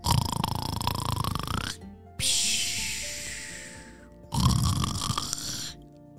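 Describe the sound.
Exaggerated cartoon snoring of a fish, with bubbles: two loud, rattling, bubbly snorts separated by a long airy whistle, like a sleeper gurgling through water. Clear, with no talking.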